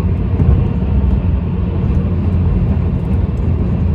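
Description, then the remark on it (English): A steady, loud low rumble of car tires rolling over the road, heard from inside the vehicle, with a continuous droning roar and no talking. “I know how this world works, and it feels like my tire is like bumpity bumpity right now.”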